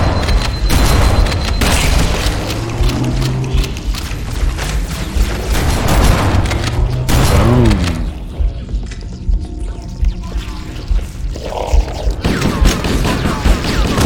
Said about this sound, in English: They shoot me! Whoa! These bulbous guys are really booming.